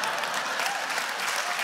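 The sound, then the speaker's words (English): An audience applauds steadily, a dense wash of many hands clapping at a fairly even level throughout, with no voices standing out above it. “Yes, okay, so, wait, no, you got a lot of applause there, so I didn't hear your next comment.”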